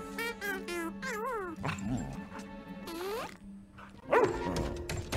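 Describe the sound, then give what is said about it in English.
A dog on a ship vocalizes loudly in a run of sharp barks mixed with drawn-out, wavering whines and yelps, with a louder burst near the end. “Can you not yell at my dog?”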